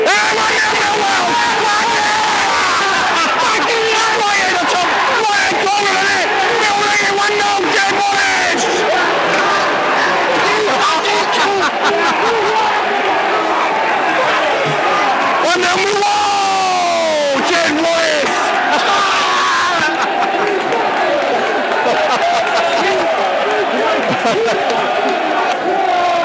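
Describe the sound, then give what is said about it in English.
A huge stadium crowd at a Millwall football match roars and cheers continuously after a free kick taken by Jed, a dense wall of shouting and whooping voices with rising and falling swells of excitement, loud throughout. “You can hear much joy, deep joy all around us.”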